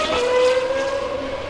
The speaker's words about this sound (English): I know you enjoy the sound of the cars at Le Mans, so I thought I'd go to particular trouble to record the sound of GP2 and F1 cars at Spa. So once again, I make no apology for devoting large sections of this programme to the sound of cars.